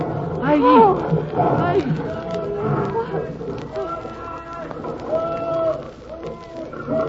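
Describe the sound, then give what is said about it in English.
A human voice imitates a tiger's hunting cry: a loud, wavering roar that swoops up and down, trailing into lower, sustained moaning tones over a busy background. “This is the tiger hunting cry. Was it made by a human? Of course it was.”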